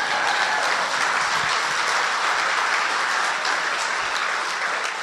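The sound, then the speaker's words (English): A large crowd claps steadily and loudly for about five seconds, applauding the God of hope, a dense, continuous wash of applause with no voices standing out. “Can we applaud the God of hope?”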